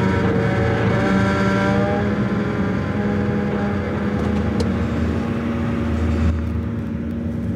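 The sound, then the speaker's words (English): An SUV rolls onto an open-air car ferry at a dock on the Detroit River, its engine giving a loud, steady low rumble with a droning harmonic hum that shifts slightly near the end. No one speaks. “An employee waves us forward, and Dave pulls his SUV onto the ferry.”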